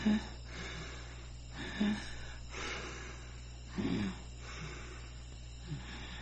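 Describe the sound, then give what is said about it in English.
Shallow, labored breathing from Daryl, a wounded character in a TV scene who is losing blood, comes in short, raspy gasps about every second or two over a steady low hum with no talking. “So then she takes off her mask in this scene and she can hear Daryl over there and he's like literally shallow breathing.”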